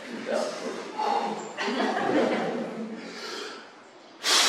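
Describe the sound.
A forceful, breathy blow of air, loud, as a person blows hard onto a scale that then reads 92 grams. Soft chuckles and murmuring voices surround it before a final sharp rush of breath.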